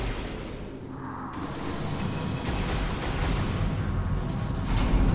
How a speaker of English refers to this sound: Alright, so we just... Sometimes we don't set off one mine, we set off a lot of mines, I guess.